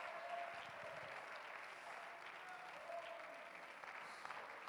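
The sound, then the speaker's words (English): An audience at a church service claps steadily for the whole stretch to give praise to God, a dense, continuous wash of many hands, with no speech over it. “Oh, I wish somebody would clap and give him some praise.”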